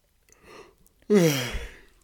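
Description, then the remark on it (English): A soft, breathy intake gives way to a sudden, fairly loud voiced exhale that slides downward in pitch, a stifled yawn held in partway, with no talking. “I'm like stifling my yawn, yeah, like holding it in.”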